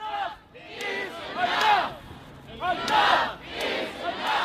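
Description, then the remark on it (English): A street protest crowd of the protest movement over George Floyd shouts in loud, overlapping surges of many raised voices, rising and falling in repeated waves of chanting and yelling over a few seconds. “decided she was going to take to the streets and join the protest movement.”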